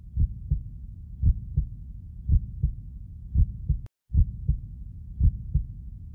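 A heartbeat heard through an Eko digital stethoscope: steady paired lub-dub thumps, low and muffled, repeating about once a second over a soft constant hum, with a brief click and dropout midway.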